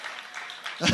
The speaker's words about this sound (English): Somebody ought to clap your hands right there and thank God.